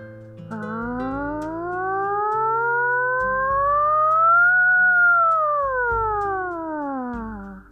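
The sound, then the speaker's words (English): A voice performs a siren exercise, imitating a siren with one long, smooth glide that climbs steadily to a high peak and slides back down over about seven seconds, above a low sustained backing tone. “Just sound like a crazy siren.”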